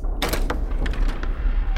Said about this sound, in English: Over there, in fact, I think that door leads to the dining room. I have to confess, the reason we're here is because there's something I really want you to see, and we have to go through the main house. So, open the door.